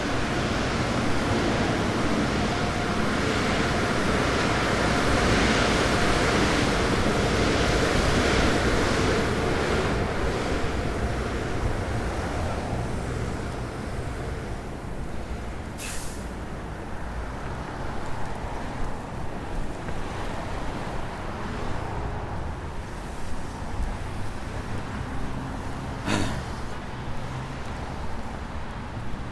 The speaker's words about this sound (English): I'm going to stop talking for a second as I pass this car wash.